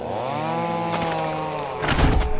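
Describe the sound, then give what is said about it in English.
A chainsaw engine drones steadily with a buzzing, whining tone, then bites into wood near the end with a louder, rougher burst of cutting noise. Loud, no voices. “As my chainsaw rips through the forest meat, I scoff at myself for entertaining such a stupid thought.”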